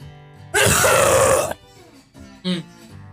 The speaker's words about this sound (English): Excuse me, I gotta cough real quick because I'm pissed. Got my shit worked up.